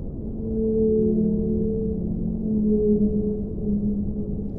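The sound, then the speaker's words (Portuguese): Long, low tonal moans of whale song drift and overlap, sustained and slowly shifting in pitch over a steady underwater rumble, with no voices present, heard through underwater microphones in the middle of the sea. “Ele vai para o meio do mar, põe um fone no ouvido e ouve o canto das baleias.”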